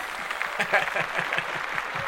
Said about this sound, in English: Clap that up.